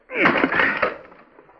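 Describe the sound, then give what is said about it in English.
An axe smashes through a wooden panel of a door locked from the inside. It makes a loud, sharp crack of splintering wood that breaks into a rattling crunch, then trails off over about a second. “There, you got through the panel”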